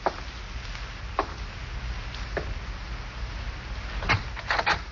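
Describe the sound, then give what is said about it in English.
Slow, evenly spaced footsteps, three or four of them, walk to the front door over a low rumble, followed by a cluster of clicks and a scrape as the front door's latch turns and it swings open. “Slowly, you walk to the front door.”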